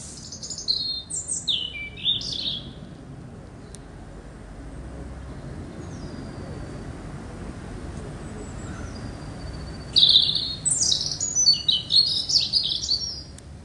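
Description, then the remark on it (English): Birds tweeting in short bursts of bright, high chirps, one cluster at the start and another near the end, over a steady low outdoor rumble with no voices. “And I promise that the entire episode isn't going to be all birdsong.”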